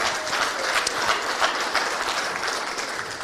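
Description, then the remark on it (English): Steady applause with a dense, hissy wash of many hands clapping at once, including Nanaia clapping while shaking her head, holding an even loudness throughout with occasional sharper claps poking through; no voices are heard. “I can see Nanaia shaking her head and clapping, so she obviously agrees.”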